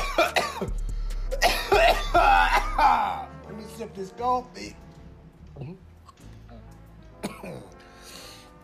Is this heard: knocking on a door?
no